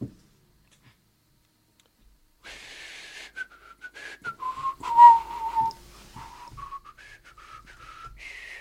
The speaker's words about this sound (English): Whistling all innocent like. Not working.